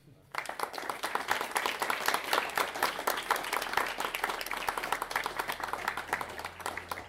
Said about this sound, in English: I think that's a moment of applause there.